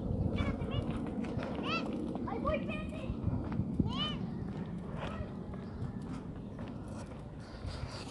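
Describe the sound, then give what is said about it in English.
Children's voices shout and squeal in bursts over a busy outdoor background, with high rising calls popping up repeatedly and footsteps or clatter mixed in. “Some kids playing.”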